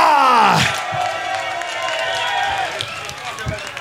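A crowd at the Decibel festival screams and cheers for a performer in a dense, sustained roar, loudest at the start with high shrieks sliding through it, then holding steady with scattered whoops and shouts.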